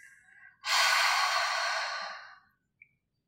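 A single long, breathy open-mouthed exhale through the mouth during a breathing practice, like fogging a mirror, rushing out for about two seconds before tapering off, preceded by a softer breath.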